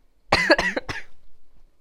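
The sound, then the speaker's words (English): A loud burst of three quick coughs, harsh and voiced, in rapid succession after laughing, then silence. No talking. “Every time I laugh, I have to cough.”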